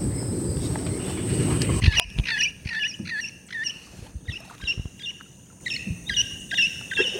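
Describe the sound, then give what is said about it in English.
A few seconds of low rumbling wind noise give way to a flock of parrots squawking and chattering in repeated harsh bursts, with a high steady insect drone in the background. “And those are parrots.”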